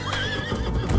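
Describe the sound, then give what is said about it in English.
A horse lets out a wavering, high whinny while hooves clop and shuffle on hard ground beneath it, a brief burst with no one talking, as one of two prized horses is taken from the stables. “Bass went straight to the stables, took two of George's prized horses, and left.”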